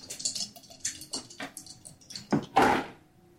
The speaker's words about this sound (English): I'll just roll 2 dice and tell you the number in a random order.